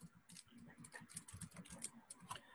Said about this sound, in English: I hear you typing. If there's any unsportsmanlike conduct, I'm going to have to disqualify you from that.